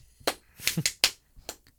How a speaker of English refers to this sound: No rhythm? What the fuck was those claps?